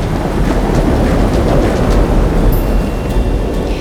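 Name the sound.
thunderstorm sound effect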